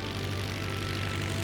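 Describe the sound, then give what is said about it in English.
A small propeller plane drones steadily during a stunt flight, its engine a constant low hum with a rough, buzzing edge that holds at an even loudness throughout, with no voices. “I went up in that plane and flew the best flight of my life.”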